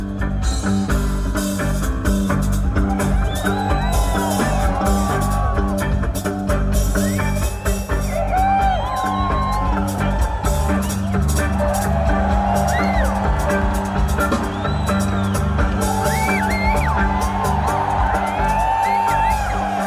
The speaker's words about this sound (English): And actually in that moment, and in the audience recording, you can hear the cheers, but that was when the glow sticks started for the festival.